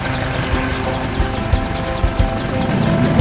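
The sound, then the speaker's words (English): A loud helicopter roars steadily, its rotor producing a fast, regular chopping pulse over a dense wash of engine and wind noise, with occasional low thumps. “Wait, Does that say U.S. Army on the helicopter?”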